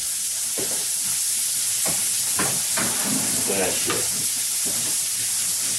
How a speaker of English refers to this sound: Now that the hot dogs and burgers are cooking, we'll come back to you when they're all done.